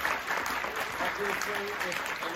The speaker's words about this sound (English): Thank you so much for coming tonight. Round of applause for the enforcers.